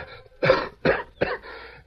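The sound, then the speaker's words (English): Three harsh, raspy coughs in quick succession as the Lone Ranger chokes on acrid powder smoke in a narrow, sloping passageway beyond a wooden door and struggles for fresh air. Short ragged pauses separate the coughs, with no talking. “The acrid smell of powder smoke in the narrow, sloping passageway beyond the wooden door forced the Lone Ranger to step back and gasp for fresh air.”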